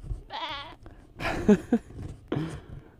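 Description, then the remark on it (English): A human voice imitates a goat falling off a cliff, letting out a few wavering, nasal bleats in quick succession, moderately loud, with a brief vocal squeak between them. “Pretend like I'm a goat falling off a cliff.”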